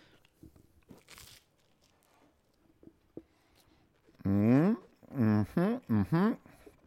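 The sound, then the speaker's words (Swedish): Someone bites into a bacon sandwich, with a few soft, crunchy bites and quiet chewing, followed by loud, drawn-out vocal sounds from a voice. “Några reflektioner här efter två tuggar.”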